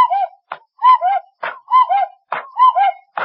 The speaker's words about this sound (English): On top of radio, light behind head, is cuckoo clock. Long Pan, turn clock back to 4 o'clock. You watch.